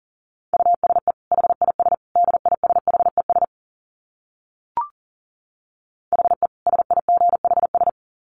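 Rapid Morse code at about 40 words per minute: a steady mid-pitched beep keyed in quick dits and dahs, sent in two bursts separated by a pause with a single brief click.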